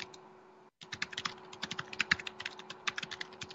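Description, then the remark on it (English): Rapid typing on a computer keyboard, a dense run of quick clicky keystrokes after a brief silent gap, over a faint steady hum. “Somebody's typing away pretty quick there.”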